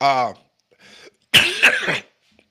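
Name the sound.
cough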